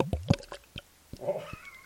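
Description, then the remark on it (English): Beer from a bottle brewed by the Mercury Brewing Company in Ipswich, Massachusetts, being poured: a few short, hollow glugs and clicks, then a brief bubbly gurgle and a final splash, moderately quiet with no talking. “So let's pop this open right now. Hear it? All right. Let's see. Let's pour this.”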